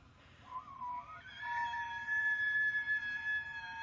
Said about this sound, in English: That's an elk.